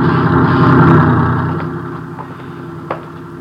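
A truck engine rumbles past on a small movie studio lot, loud and throaty at first, then steadily fading as it moves away; no one speaks.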